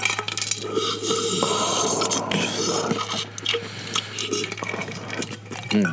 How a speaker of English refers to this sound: Let me get my cup of whiskey. Yeah, let me take a sip. Whiskey. See if you like how it sounds. Take a sip.